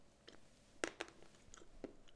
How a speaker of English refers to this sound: excuse the chewing, some fine quality dark chocolate.